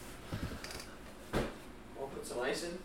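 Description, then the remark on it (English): A refrigerator door, left wide open, is handled with soft clunks and rattles as a beer is grabbed, then one sharp thump midway, followed by faint clinking and muffled voices. “I can't believe I fucking left the door open.”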